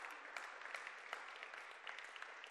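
A crowd gives God a hand clap in the morning, clapping together in steady, dense applause, many hands overlapping into a continuous bright patter with occasional sharper individual claps, sustained at an even level with no voices on top.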